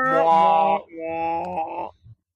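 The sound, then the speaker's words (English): A voice imitates a foghorn-like thunderclap: two sustained, droning groans, the first louder and steady, the second slightly wavering, ending with a short low grunt. “A little meek thunderclap outside. Ironic one, some sort of foghorn-like thunder.”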